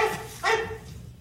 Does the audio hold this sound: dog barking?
yes